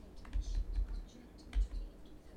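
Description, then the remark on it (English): Several computer keyboard keys are pressed in a quick, irregular burst of clacks and thuds, moderately loud, with no talking, as someone tries every key to find a computer game's controls. “Okay, let's try every key possible. F, E. No, use that. Enter, shift.”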